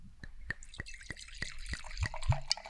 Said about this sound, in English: Ah, a Pinot pour. Excellent. Sounds like the rare show where we start with a red wine.